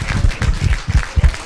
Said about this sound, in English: Let's give the Lord Jesus a wonderful hand praise. Because the Bible does say, clap your hands unto the Lord.